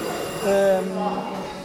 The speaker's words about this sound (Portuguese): Esta campainha, o que é que é? Portanto, esta campainha é o sinal do tempo, portanto, tocou para o final de um round, cada round são 3 minutos.